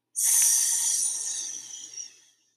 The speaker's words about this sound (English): The breath too is aiding that as it helps to restore harmony, calm, balance. Breathing in through the nose and out with the sound.